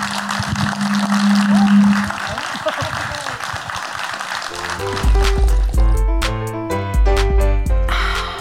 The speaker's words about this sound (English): Thank you very much, lovely people of Canterbury and nearby, for coming out. And give yourselves a massive round of applause for coming out. Thank you very much.